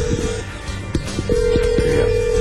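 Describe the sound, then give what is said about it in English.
A phone ringing tone sounds in steady repeated bursts, a sustained electronic tone broken by pauses, heard over a busy background with faint clatter and murmur. “Answer the damn phone.”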